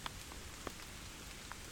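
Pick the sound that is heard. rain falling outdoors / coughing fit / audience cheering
rain falling outdoors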